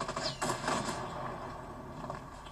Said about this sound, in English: Ooh, you heard that was a rocket, my rocket propelled grenade.